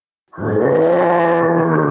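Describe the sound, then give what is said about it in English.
A man lets out a single loud, sustained roar with his voice, a deep growling bellow that starts abruptly and holds steady at full strength for over a second and a half. “Now that's a roar. That's the kind of roar we like.”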